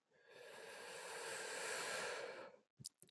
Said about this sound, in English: Take a nice deep breath in, ideally through the nose, but it can be through the mouth, all the way down to the stomach and diaphragm. Hold for a little bit at the top, and then let it out with almost a sigh of relief. Breathing in,